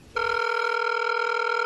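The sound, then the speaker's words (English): A telephone ringing as a call is placed: a steady, bright electronic ring tone starts abruptly and holds at an even, loud level without pause. No one speaks. “So let's dial up Jared Kushner.”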